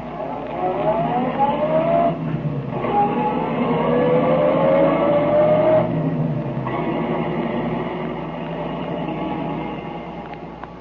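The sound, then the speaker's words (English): A car engine drones steadily as the detective Tracy drives his car to Tess Trueheart's home, its pitch climbing through a couple of gear changes, loud with no voices. “We know, but Tracy does not, that Remo lies concealed in the back of Tracy's car while the detective drives to Tess Trueheart's home.”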